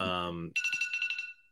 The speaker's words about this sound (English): There's another one of your alarms. That's the one I sleep through.